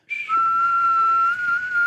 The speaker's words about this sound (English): Okay, I can't really whistle, but bear with me. Come on. I can't do it. Can you? So, you want to you whistle it, and then we'll see if people can guess. Okay, okay.